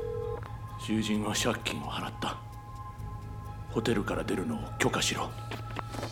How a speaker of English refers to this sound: Oberlin dialed the number Tanaka instructed and held the phone to the gangster's ear.